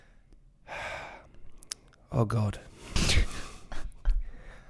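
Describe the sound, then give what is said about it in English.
A person exaggeratedly imitates heavy breathing and panting, with a breathy exhale followed by voiced huffs and a gasp, mixed with brief spoken exclamations. “You've got to do more, heavy breathing.”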